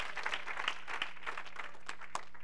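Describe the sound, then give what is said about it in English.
A church audience applauds together in praise during a service, a dense wash of many hands clapping with sharper individual claps poking through, steady and moderately loud, with no one speaking over it. “One more time, clap your hand and give him praise, and you may be seated.”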